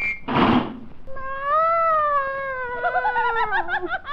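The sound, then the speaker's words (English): A brief rustling burst, then Tibby the cat, in the pantry, lets out one long, drawn-out meow that rises and wavers toward the end, fairly loud with no talking. “That's a burglar, all right. A cat burglar.”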